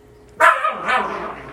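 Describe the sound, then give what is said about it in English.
A dog, frustrated and biting a ball, lets out a sharp bark followed by a second, softer yelping bark, fairly loud, with no talking over it. “Wow, my dog is very, very frustrated right now.”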